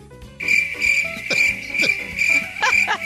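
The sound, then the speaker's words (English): A steady, high-pitched cricket chirping plays alone, a continuous shrill trill held throughout with faint swelling pulses, fairly loud. “Sorry, still crickets.”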